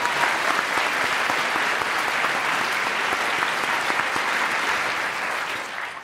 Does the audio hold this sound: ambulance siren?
no